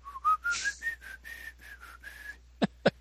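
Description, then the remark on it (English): Someone whistles the classical melody In the Hall of the Mountain King in a quick run of short, clear notes that climb gradually, followed by two sharp knocks near the end. No one speaks. “He would whistle in the Hall of the Mountain King as he stalked the children.”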